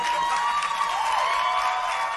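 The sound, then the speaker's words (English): A crowd claps steadily, a dense wash of many hands sustained at an even, fairly loud level for about two seconds, with a faint tonal whistle-like cheer running through it. “Oh, yeah, they have clapped for you.”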